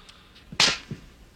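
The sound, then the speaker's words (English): A sharp, loud slap to the face cracks out, followed moments later by a softer, duller second smack: a double slap from the film Moonstruck. Brief, with no voices around it. “Snap out of it. Double slap.”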